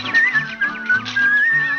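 Someone whistles a bright, cheerful tune, the pitch hopping between a few notes, with a soft, low musical backing humming underneath.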